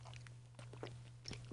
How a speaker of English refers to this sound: He says as he takes a sip.